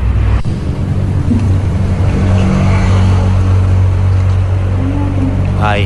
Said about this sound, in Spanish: No, es cuando se oye el ruido del coche, cuando se oye el ruido del coche.